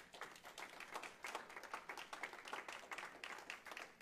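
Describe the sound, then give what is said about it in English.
An audience applauds to welcome a newly baptized member, a steady, dense patter of many hands sustained for about four seconds, with no voices rising above the clapping. “So the welcome is not just in words or just giving her wine clap, right?”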